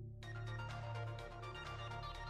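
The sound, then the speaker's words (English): A loud electronic phone ringtone sounds, a continuous melodic tone with bright harmonics and a steady pulsing rhythm, with no voices over it. “The phone rang again.”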